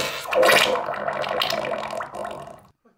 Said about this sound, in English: Can you hear this? And this. And this underwater fart.